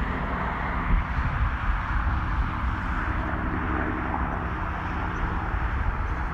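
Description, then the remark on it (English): A World War II replica propeller plane flies directly overhead, droning steadily, a deep, throbbing engine rumble with buzzing low tones that holds at an even loudness throughout, with no voices. “It's just looked like a World War II replica plane just flew directly over my head.”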